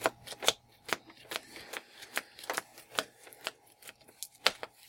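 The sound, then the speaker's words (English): A deck of playing cards being shuffled in quick repeated riffles during a card game, a steady string of sharp flapping bursts, fairly quiet with no talking. “Shuffle faster.”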